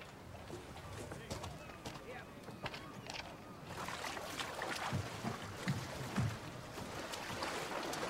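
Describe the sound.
Someone clambers into a small boat: hollow thumps and scuffs on the hull over sloshing water and outdoor rush, with three heavier knocks near the end and indistinct voices.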